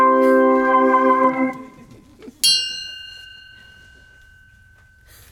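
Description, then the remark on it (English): A deep clock chime strikes at midnight with rich, lingering overtones, followed by a brighter, higher bell strike that hangs and slowly fades into near silence. “that chime makes it 12, and this play concludes season 2 of 12 Chimes. It's midnight.”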